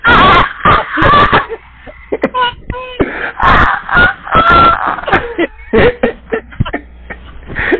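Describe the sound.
A man vocally imitates the Thanos scream, an agonized movie scream, with strained, wailing bursts and broken moaning cries repeating, loud and harsh, with short gaps between outbursts.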